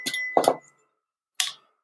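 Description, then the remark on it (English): A Koshi wind chime of the air element rings: a cluster of bright, shimmering metallic tinkles that briefly ring on, a short silence, then one more clear chime strike fading quickly. “Okay, I need to get myself some Koshi bells.”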